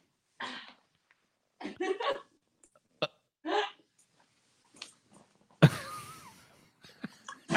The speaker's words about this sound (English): When she literally just farted in that.